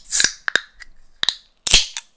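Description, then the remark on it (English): A Canada Dry soda can in a Yeti koozie cracking open: bright fizzy hiss bursts and a string of sharp metallic clicks and pops from the tab, with no talking. “Before I do that, here's a little ASMR of the new... it's a Canada Dry, by the way, even though it's in a Yeti koozie.”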